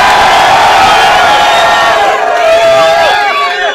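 A loud crowd at a DFI slagging-match battle event in Ireland cheers and whoops continuously, a dense wall of shouting voices with rising and falling high-pitched yells layered on top, sustained for several seconds.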